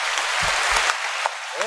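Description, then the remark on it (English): Steady, dense audience applause fills the whole moment, a bright hiss of many hands clapping at once, with a few low thumps mixed in partway through. “Like, let's give a round of applause, yo.”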